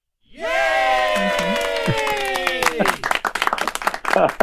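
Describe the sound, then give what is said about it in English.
Audience applause: a long, falling cheer of voices rises over scattered claps, then dense, crackling clapping carries on loudly to the end. “Got a lot of applause today.”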